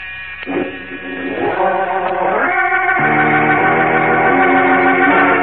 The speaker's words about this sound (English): As Jim Olsen opens the door to the Metropolis Music Publishing Company, a buzzer sounds ominously somewhere in a rear office and ceases only when the two boys have entered and closed the door behind them.